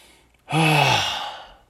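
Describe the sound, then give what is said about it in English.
One deliberate long, deep exhale lets out as a voiced sigh, fairly loud at first, then slowly tapering off, with near-silence before it and no talking. “I should breathe. I'm trying to breathe right now. Let's breathe, everybody. Breathe with me.”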